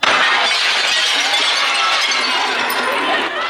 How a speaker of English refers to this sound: Rioters smashed windows all along Broadway